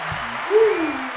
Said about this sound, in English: Round of applause.